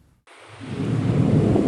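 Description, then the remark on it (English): Blizzard wind in Soda Springs, California, in the Sierra Nevada mountains during the biggest storm of the winter, with whiteout conditions and up to 12 feet of snow, roars in after a brief silence, a broad rushing gust that swells steadily louder and heavier, with a deep rumbling low end and no voices. “Tonight, rare blizzard warnings for the Sierra Nevada mountains as the biggest storm of the winter slams California with up to 12 feet of snow, life-threatening conditions, and impossible travel in the mountains.”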